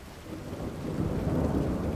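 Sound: thunderstorm with rain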